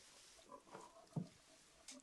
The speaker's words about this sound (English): They're my pigs.